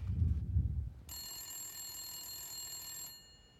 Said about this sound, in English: I like that it's like the bat phone. It's like a red phone. Pick it up.